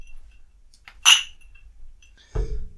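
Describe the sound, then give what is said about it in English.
A single bright clink of glasses touching in a toast, ringing briefly, followed a moment later by a duller knock as something is set down. “Let's get this thing started. Cheers.”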